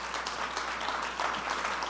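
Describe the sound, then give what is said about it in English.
A church audience stands and claps together in a steady, dense wash of applause, the many hands blending into a continuous bright patter with no voices rising above it. “If you believe that, stand and clap your hands.”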